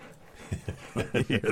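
Dogs panting, a string of quick, breathy huffs that start sparse and grow louder and more rapid, with no one talking over them.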